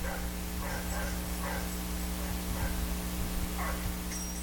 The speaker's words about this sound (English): Nope. Doggy.